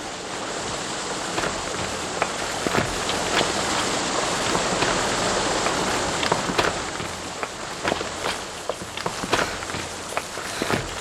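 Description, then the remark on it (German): Hurried footsteps of two people on a forest run before breakfast, running to a waterfall, a steady series of sharp thuds that quicken toward the end, over a constant rushing wash like water. “rannten bis zu einem Wasserfall.”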